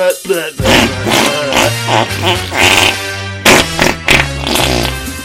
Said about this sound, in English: Instead of duh, duh, duh, duh, duh, duh, should it be like all farting noises?